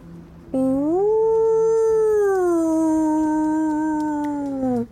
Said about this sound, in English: Ooh. Howl.